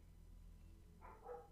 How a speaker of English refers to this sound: Okay, sorry, my dog's barking. He'll shut up in a minute.